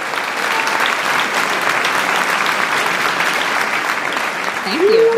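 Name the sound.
applause sound effect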